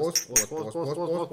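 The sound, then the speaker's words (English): Two bright glass clinks ring out in quick succession, the clear ping of glasses of schnapps touching in a toast, followed by a voice speaking. “So, Prosterchen. Prost.”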